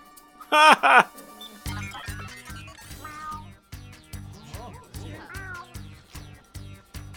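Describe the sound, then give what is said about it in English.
Two loud meows in quick succession from an android imitating a cat using a Catnator 85 behavior module, followed by upbeat music with a steady thumping beat. “That's why this product was invented, the Catnator 85, a behavior module that allows any android to become a feline friend.”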